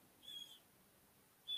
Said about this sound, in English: You got a bird that wants to join the podcast, it sounds like, behind you there.